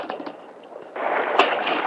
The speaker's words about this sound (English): That stallion jumped right into the creek.